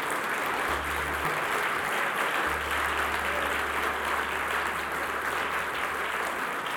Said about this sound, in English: Let's give the Lord a great big hand clap for tonight.